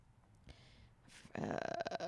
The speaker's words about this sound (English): I got a burp. Don't throw up. I almost did. It's fucking ramen.